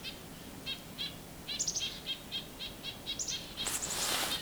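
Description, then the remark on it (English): A purple finch call: a steady series of short, chirpy notes repeated about twice a second, a few higher whistled notes mixed in, over a soft outdoor hiss with no talking. “Might have been a purple finch call, I don't know.”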